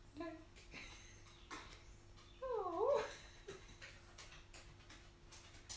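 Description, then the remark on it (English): A small dog whimpers, giving a short high whine early on and a pair of falling, wavering whines a few seconds later, with faint rustling and ticking movement around it. “Hello, little doggy. What you doing?”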